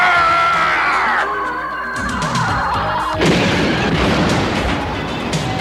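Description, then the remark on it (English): A heavy boom from a cannon blast that blasts a crater in the middle of a road breaks out, followed by a rumbling, crackling roar of debris and a low sustained tone that fades under continuing noise. “And he blasts a crater in the middle of the road with Miles screaming and Outlaw falling right in.”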